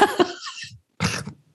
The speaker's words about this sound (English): So you made me snort then. I've never never done that on the podcast.